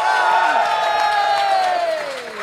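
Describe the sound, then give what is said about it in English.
An audience cheers and applauds loudly and steadily as the first guest is welcomed on, with one voice holding a long whoop that slides downward in pitch before the noise eases slightly at the end. “So, please, when all the guests come on, make sure you give them a lovely round of applause as you just did.”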